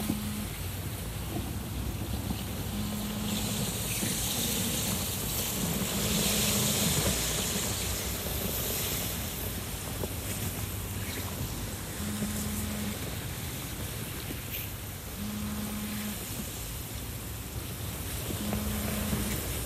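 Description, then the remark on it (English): A steady, full rush of river water carrying floating ice, continuous, with brief low grinding tones recurring every few seconds beneath the flow as a large island of ice brushes up against the banks. No one speaks. “A large island of ice brushes up against the banks, and swiftly but gently, I lower the sculpture onto it.”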